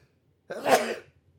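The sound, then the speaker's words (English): A single sneeze bursts out, a sharp, breathy rush of air lasting about half a second, surrounded by quiet with no talking. “Pardon me, but I think I've been wanting to sneeze like that for like the past minute or so, and it's been like right there.”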